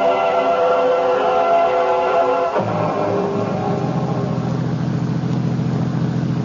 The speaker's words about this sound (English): I was still fuming, even after the limousine with Stokelys had sent to pick me up at Dulles Airport was purring along the road west toward Winchester.